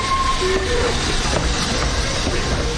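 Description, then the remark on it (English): An electric train pulls into the central station in Krakow, Poland, with a steady, loud rumble, and brief high squeals from the wheels suggest it is braking toward a stop. No voices. “The train let off a blast of steam and slowly ground to a halt.”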